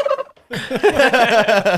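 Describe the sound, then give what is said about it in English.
A person doing turkey calling imitates a turkey gobble with his voice, loud: a short throaty note, a brief pause, then a rapid, rattling gobble that rolls on for over a second. No one speaks. “I've had other people shoot turkeys over me. Not over me, but over my calling.”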